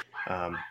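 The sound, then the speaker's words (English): A single dog bark, loud, comes as one short, sharp burst with a strong tonal edge, with no talking around it. “I'm actually meeting with, can you guys hear the dog barking right now?”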